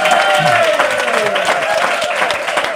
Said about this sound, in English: I have a live audience. First of all, give yourselves a round of applause.